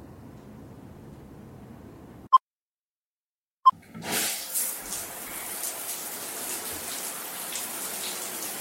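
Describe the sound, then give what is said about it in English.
Two short clicks break the quiet, then a shower bursts on and keeps running in a steady hissing spray with no one speaking. “Go take a shower, wash up, and we'll figure out what to do when you get out.”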